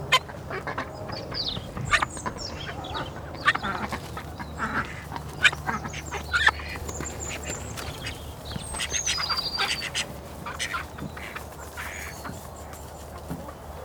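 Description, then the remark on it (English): Small call ducks on a farm quack repeatedly in a busy, overlapping chorus, some calls sharp, others softer, with a low steady hum running underneath throughout. “Five of which are call ducks, little call ducks, so they're only small.”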